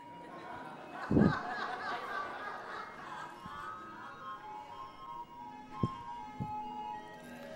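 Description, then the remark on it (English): A tinkling ice cream truck jingle plays continuously at moderate volume, with faint chatter and occasional laughter in the background and a few sharp knocks along the way. “Sitting there thinking about that bread, and all of a sudden the ice cream truck comes by, and the bread is now replaced with the thought of the bomb pop that you're going to get off that truck.”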